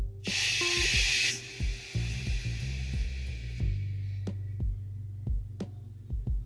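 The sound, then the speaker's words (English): A loud, breathy shushing hiss, made to soothe a child to sleep, lasts about a second, then trails off into a fainter hiss. Steady low thumps and throbbing run underneath. “They call it white noise, right?”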